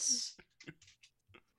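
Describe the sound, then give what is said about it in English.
Dice clatter in a tray: a quick rattling burst followed by several irregular, sharp clicks as they tumble and settle, fairly quiet. “No, that's a floor. That's a tray dice.”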